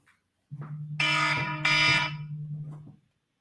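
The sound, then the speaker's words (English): A loud electronic phone alarm blares continuously for about two and a half seconds, a steady low drone overlaid with two harsh, bright bursts of ringing tones. “Wow, this alarm is a lot louder than the last one.”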